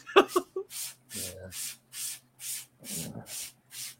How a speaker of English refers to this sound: Is that weed infused stuff or is he spraying something? I think he's been freezing his chair. Yeah, because the cat got down, and I have an opportunity to freeze my chair while I'm not sitting in it.